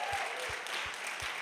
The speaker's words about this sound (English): As many of you guys know, next week we'll be having our anniversary, our 11th year anniversary as a family here at Nashville Life. So I think that calls for a round of applause.